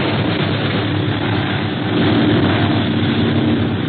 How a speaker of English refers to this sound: Gosh, this plane has 12 motors. It's hard to outfly a pursuit plane.